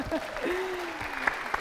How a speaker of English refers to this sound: I think someone from your section, or maybe just someone generally, gave you a little round of applause there.